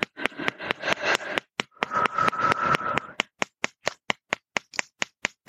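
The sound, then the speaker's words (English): Quick fingertip taps on a person's body from the front, on the scoliosis points, to put energy in. At first the taps come in dense bursts over a soft rubbing hiss, then turn into a steady series of crisp, separate taps, moderately loud, with no talking. “Tap from the front, some energy in from the front.”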